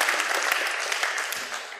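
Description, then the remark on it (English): A crowd gives a man a special round of applause, a dense wash of many hands clapping at once, loud and sustained throughout with no voices standing out. “Give him a special round of applause.”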